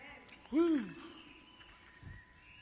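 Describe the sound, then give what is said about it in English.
One loud, swooping bird-like whistle rises and falls over about half a second, then fades into faint, thin chirping tones lingering quietly in the background. “I never figured out what those whistles reminded me of”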